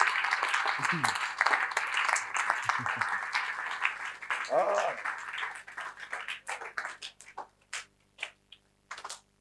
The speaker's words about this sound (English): See the way you're appreciating me. No problem. It's okay. Thank you. You clap for Jesus. Yes.